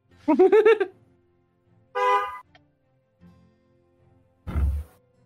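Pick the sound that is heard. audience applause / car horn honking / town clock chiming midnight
car horn honking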